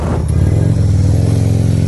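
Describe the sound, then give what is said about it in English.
A loud motorbike engine roars past with a steady, throaty rumble at Comic-Con, sustained throughout as it passes, with no talking over it. “Loud motorbike going past.”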